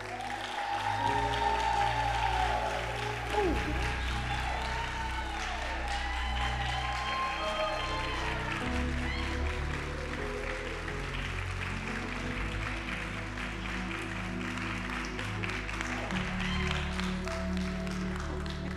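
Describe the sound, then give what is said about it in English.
An audience at Metro City claps steadily as a warm welcome for a person called up, a dense, even wash of applause that holds for nearly twenty seconds, with some musical tones rising and falling over it early on. “If you would please give a warm Metro City welcome.”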